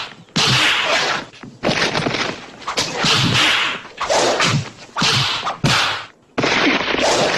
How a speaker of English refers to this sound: And the sound effects is what I enjoy the most, especially in this one, where it's definitely a lot of fighting going on.